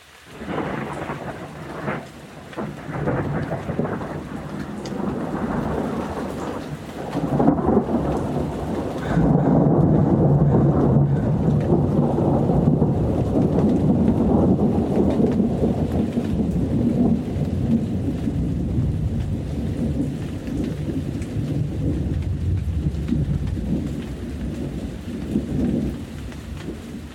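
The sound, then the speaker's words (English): A thunderstorm recorded from a patio rolls on with steady rain hissing and pattering, while deep rumbles of thunder swell and linger in the low end, growing heavier midway through. “This is a recording of a thunderstorm from my patio.”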